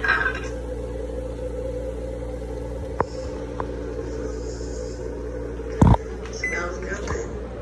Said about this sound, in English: And I'm holding the phone right up close so it can hear it popping, popping and sizzling.